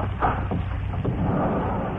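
The heavy sliding side door of a train's express car rumbles and scrapes open over about two seconds, moderately loud, with a steady low mechanical rumble underneath and no voices.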